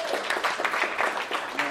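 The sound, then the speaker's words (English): An audience in a church claps together in a steady, dense wash of applause that holds at an even loudness for a couple of seconds, with a murmur of voices mixed in. “Clap, please, clap.”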